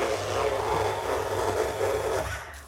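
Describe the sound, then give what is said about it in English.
A paper shredder shreds a yellow sheet of paper, running steadily for about two and a half seconds, a low motor hum under a dense, rough grinding rasp, then cuts off abruptly. “That was a good shred, that one.”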